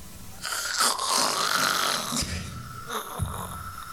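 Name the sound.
voice imitating loud snoring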